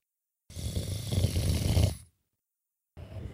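A deep, rumbling snore from a lion sleeping in the sun: one long, loud, throaty breath with a rough low growl, a brief silence, then the next snore beginning.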